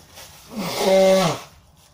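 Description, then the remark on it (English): A single loud, drawn-out burp, about a second long, with a low voiced rumble that swells and then trails off. It stands alone with no talking. “What alternative did I have? Not burp, and then since I'm holding in the burp, then it just builds up, and then what?”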